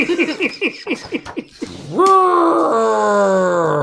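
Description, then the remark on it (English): A voice imitates an angry horned dinosaur: a burst of rapid, choppy grunting snarls gives way to a long, loud, strained roar that holds steady before cutting off. “Don't horn shame the dinosaur.”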